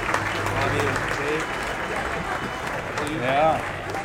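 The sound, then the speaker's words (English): An audience breaks into steady, dense applause lasting several seconds, honouring a man who served 14 years on City Council and two terms as mayor, with murmuring voices and a brief rising call mixed into the clapping near the end. “I think that right there deserves a round of applause.”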